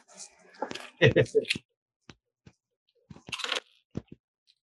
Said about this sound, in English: There goes some more. I rolled a 4 on my bonus die and a 1 from my shot.